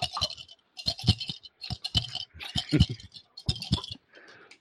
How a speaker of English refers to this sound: Take a bunch of dice, stick them in your cup, your hands up,